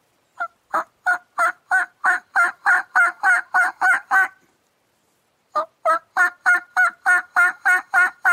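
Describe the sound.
Two steady runs of turkey hen purring and talking calls made on a diaphragm mouth call, each a rhythmic string of about a dozen raspy notes, separated by a short pause, with no talking.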